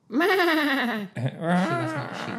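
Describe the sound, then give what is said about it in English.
A person imitates a sheep with two long, wavering bleats, loud, the second breaking into a shakier, trembling cry. “Do your sheep now.”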